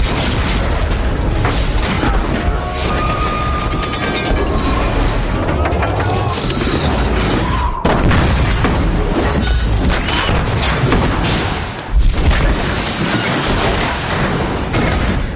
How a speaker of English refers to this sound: I do like that they got some impressive explosion sound effects out of that, though.